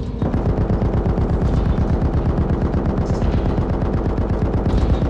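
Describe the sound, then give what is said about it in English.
The Duchess's heavy gun opens fire on a monster in sustained rapid fire, a dense, loud stream of shots rattling steadily for several seconds, unbroken, with no voices. “There came a sudden explosion of activity as the Duchess's gun sprang to life again and opened fire on the monster.”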